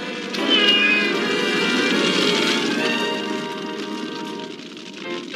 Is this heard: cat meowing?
yes